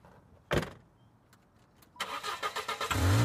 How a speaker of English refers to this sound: And if you glance out your window, you can see Nina and Glenn walking to a car that's parked on the street and getting in and driving away.